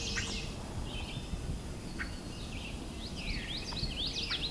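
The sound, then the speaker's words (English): A distant winter wren sings faint, rapid, high bubbling trills that run almost continuously over a steady outdoor hiss, with no one talking. “In the distance, I can hear winter wren singing.”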